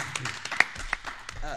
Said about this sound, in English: I'm clapping for us.